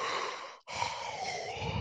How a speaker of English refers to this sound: That's a creepy yawn, man. You got to get that checked.